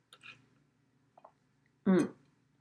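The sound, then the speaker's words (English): Someone sips water: a couple of quiet wet mouth sounds, then a loud, short, throaty gulp near the end, with no talking. “Sorry, I need to take a break and take a sip of water because I drink all the coffee.”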